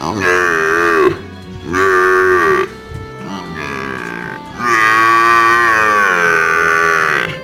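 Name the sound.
water buffalo bellowing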